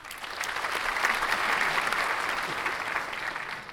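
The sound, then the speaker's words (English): An inserted applause sound effect: a burst of crowd applause, dense clapping from many hands that swells briefly and holds steady for a few seconds before tapering slightly, heard on its own without any voices. “can you insert applause for me being correct here?”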